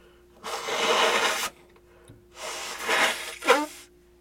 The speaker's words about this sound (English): Oh, pardon me. I'm going to blow my nose. Over there. Now I sound like my nose is stuffed because it is.